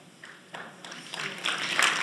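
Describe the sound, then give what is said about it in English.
Audience applause that starts with a few scattered claps and quickly swells into fuller, steady clapping, growing louder over two seconds with no voices over it. “I think that does really deserve a round of applause.”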